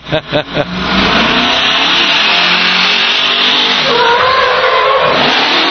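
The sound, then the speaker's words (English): A racing truck engine blips a few quick revs, then roars into a loud, sustained high-revving run, dominant, with pitch shifts as it climbs through gears. “All right, let's see what the Hornets got. Chase these guys for my entire career. Still a pretty truck.”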